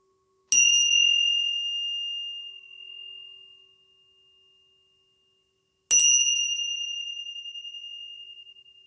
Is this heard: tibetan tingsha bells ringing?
yes